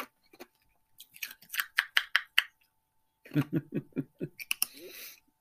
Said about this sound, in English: Sorry, when you don't have teeth anymore and you're allowed to finally crunch ice with your dentures, you enjoy it.